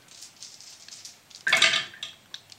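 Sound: dice rolling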